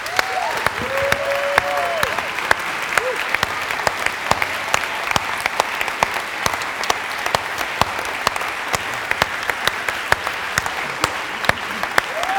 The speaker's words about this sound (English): And I just wonder whether you would join with me and just give me a huge round of applause to those who actually serve in that respect.